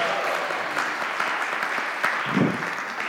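An audience applauds steadily for about three seconds, a dense, even patter of many hands clapping at once with no voices rising above it.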